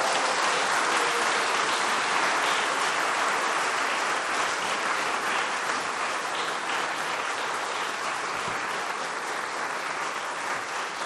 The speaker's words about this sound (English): Okay, that's enough. You'll have more chance to cheer later.